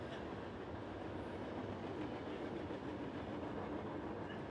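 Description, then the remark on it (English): A train rumbles past steadily, a broad, continuous roar with faint rhythmic clatter from the wheels, fairly loud and sustained throughout with no voices. “I know you all think that's the train.”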